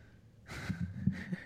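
Two airy breaths blow straight into a microphone, with soft low thumps and bumps of the mic being handled and moved around in between. Fairly quiet overall, with no talking.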